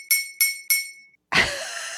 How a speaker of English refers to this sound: Oh, I like that. Was that your glass? Was that your coffee? That's me hitting a knife on my glass.